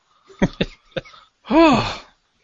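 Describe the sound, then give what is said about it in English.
Three short, abrupt hiccups jolt out in an uneven rhythm during a radio show, followed by a louder drawn-out voiced groan that bends in pitch for about half a second. “And I still have my hiccups.”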